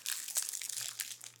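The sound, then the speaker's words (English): Crisp, crackly crinkling of a wrapper as a piece is broken off a little Santa-shaped Kit Kat, a steady stream of bright rustles and small snaps lasting about a second and a half, with no talking. “We can break it off and you can think of your favorite story from your trip.”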